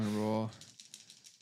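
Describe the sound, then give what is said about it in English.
A short burst of speech gives way to dice being rolled for a rapport check, clattering on a hard tabletop: a quick series of light clicks and taps that settle quietly. “Slap me a few dice on the table.”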